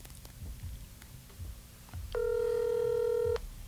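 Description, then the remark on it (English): A single steady ringback tone of an outgoing phone call to someone's mother, about a second long, sounding clearly in the earpiece over a low background hum, with no one speaking. “Okay, it's ringing. It's ringing.”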